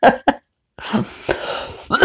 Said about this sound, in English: But yeah, I do have a little bit of this cough.